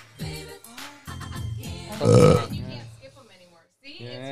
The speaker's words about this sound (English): I love how he burped right there. Burp.